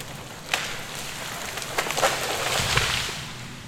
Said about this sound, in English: Damn storm.